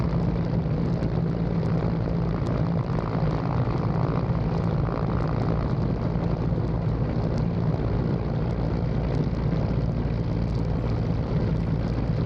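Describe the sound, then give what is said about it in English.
A helicopter comes up from behind a cargo ship and flies above it, its engine and rotors droning loudly and steadily throughout, a dense low rumble with a constant mechanical hum, with no one speaking. “For those listening, he's just coming up from behind the cargo ship, flying above it.”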